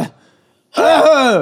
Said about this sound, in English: I'm sorry. I have a little bit of a cough.